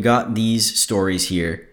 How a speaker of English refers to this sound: And a yawn.